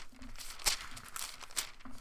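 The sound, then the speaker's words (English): Book pages being turned to Acts chapter 8: a few quiet papery rustles and flicks scattered over a couple of seconds, with a soft crinkle in between. “You hear the pages turning, perhaps.”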